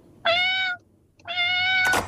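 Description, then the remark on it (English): A person mimics a cat meowing: two sustained, steady, high-pitched meows separated by a short pause, followed by a brief noisy burst at the end. No one talks. “I do a pretty good cat,”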